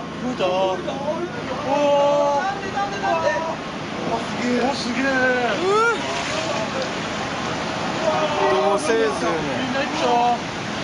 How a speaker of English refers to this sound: There's a video on YouTube of the tsunami hitting Miyako Harbor in northeast Japan.